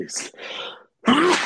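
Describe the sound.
A breathy, hissing build-up gives way to a short pause, then a single loud, explosive sneeze with a voiced, strained edge.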